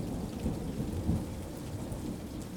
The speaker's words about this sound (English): Let's bring in some rain sound effects.